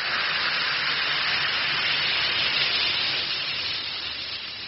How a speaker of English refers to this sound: Just drop one or two Alka-Seltzer tablets into a glass of water like this. Listen to it fizz.